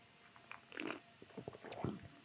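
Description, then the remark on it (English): Quiet mouth sounds of someone taking first sips of a frothy, foamy sour cocktail: a few soft slurps and a gulping swallow over a couple of seconds, with no talking. “Maybe it's all worth it when we take our first sips.”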